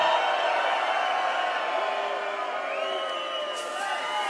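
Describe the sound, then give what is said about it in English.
A large crowd cheers and roars steadily, with scattered whoops and high shouts rising above a dense wall of voices, loud and sustained throughout. The crowd is at the Musical Freedom Stage of Tomorrowland in Belgium, cheering for a DJ. “Let's everybody make some noise one time for the legendary ….”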